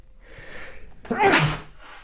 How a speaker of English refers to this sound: I'm going to sneeze real quick.